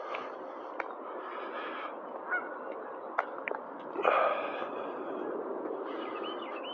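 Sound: geese honking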